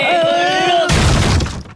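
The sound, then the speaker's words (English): A door smashes and breaks apart as a person is pushed face-first through it, a loud, sudden burst of splintering crashes lasting under a second, preceded by a steady, drawn-out groaning tone that cuts off at the impact. “smashing through a door with his face.”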